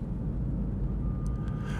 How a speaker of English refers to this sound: Well, well, well. I'm driving in my car. How do you like that?